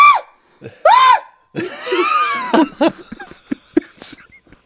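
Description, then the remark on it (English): A person imitates a terrified scream: two short, high rising-and-falling shrieks, then a longer raspy, strained screech that breaks into choppy gasping bursts, loud. “But when they scream, it's like a terror scream.”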